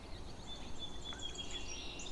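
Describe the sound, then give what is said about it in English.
Red-winged blackbird song: thin, high whistled notes and a buzzy trill over steady outdoor background noise, with no voices. “Red-winged blackbird.”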